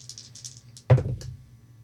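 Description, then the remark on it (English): Small dice rattle briefly in a hand, then clatter onto a hard surface with a sharp tumble and one last click as they settle, rolled for a hard spot hidden check. The sound is fairly quiet, with no voices. “And I'm gonna use different dice because, oh boy.”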